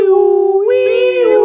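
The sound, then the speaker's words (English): A voice imitates a siren with one loud, sustained wailing tone that lifts slightly in pitch midway and holds for about a second and a half. “But call in the wee woo. Give me some sirens, boys.”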